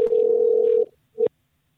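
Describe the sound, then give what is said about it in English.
A jail telephone rings with one long steady electronic tone lasting most of a second, then a brief second burst after a short pause. Clear, with no voices. “Your phone rang. You better answer it, motherfucker.”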